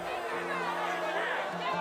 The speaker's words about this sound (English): A hum of indignation began to rise from the crowd as they muttered to themselves and their neighbors. The crowd grew louder and louder, and some pressed toward the king.